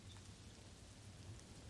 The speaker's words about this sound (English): And the rain continues its gentle song on the colorful glass windows.